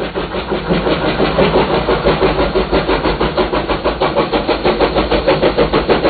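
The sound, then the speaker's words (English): The 3801, an Australian steam locomotive built during the Second World War, pulls out of Central station with loud, steady chuffing, its rapid exhaust beats repeating in an even rhythm over a continuous mechanical rumble, with no voices. “Pulling out of Central, the 38 is a grand sight.”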